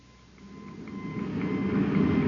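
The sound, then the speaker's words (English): Rough, hissing radio static swells steadily louder, with faint thin whistling tones drifting through the crackle. There is no talking. “The interference is gone, sir.”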